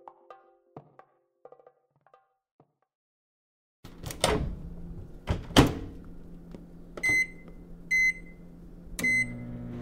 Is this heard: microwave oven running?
yes